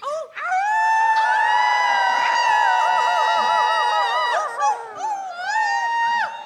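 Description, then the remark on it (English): An audience howls together like wolves instead of clapping, many overlapping wavering voices rising and sliding in pitch, loud and sustained for several seconds before trailing off into scattered yips. “If you get tired of clapping, it's really fulfilling to howl like a wolf instead.”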